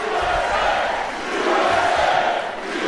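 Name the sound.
rally crowd cheering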